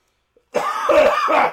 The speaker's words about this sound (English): We just cough really quick into the microphone.